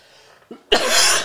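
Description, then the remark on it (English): A single harsh cough bursts out loudly after a brief quiet breath, with a raspy, throaty texture that lingers for a moment. “coughs it out. Always coughing.”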